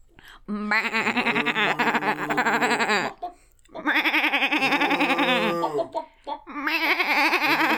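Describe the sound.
People imitate farm animals as if on a farm, with cow, sheep and chicken calls in turn: three loud, drawn-out vocal calls with a wavering, bleat-like quality, separated by brief pauses, with no ordinary talking.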